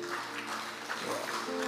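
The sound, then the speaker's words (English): An audience clapping together, a dense, steady wash of many hands at an even, moderate loudness, with a soft sustained tone humming underneath throughout. “You can clap.”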